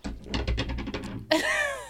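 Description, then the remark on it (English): A small candle lid, knocked over, clatters and rattles on a hard surface, a quick run of repeated taps as it wobbles, followed by a brief voiced exclamation. “I just knocked over a cup holder”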